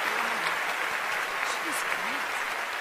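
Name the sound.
thunderous applause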